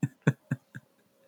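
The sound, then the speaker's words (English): A quick series of four sneezes, each a short, sharp burst of breath, fading a little louder-to-softer from the first to the last, with no talking. “Bless you.”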